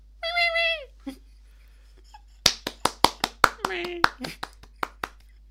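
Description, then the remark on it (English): A short meow-like cry, then after a pause a brief round of audience applause: about a dozen sharp, uneven hand claps over three seconds, with a faint voice murmuring between them. “Beaker would like you to have a round of applause for him.”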